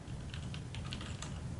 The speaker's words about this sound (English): So I can feel a slight bump when I press these keys. So I am pretty sure that these are browns.